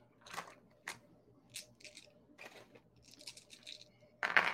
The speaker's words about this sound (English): would you roll me an awareness? That's 4 dice.